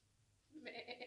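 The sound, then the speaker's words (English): A person imitates a giant goat, letting out a short, wavering bleat that pulses in three quick bursts, fairly loud, with no other sounds around it. “Oh my god, do a giant goat, please, do a giant goat, please.”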